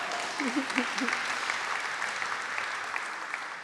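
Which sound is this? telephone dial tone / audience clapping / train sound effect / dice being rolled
audience clapping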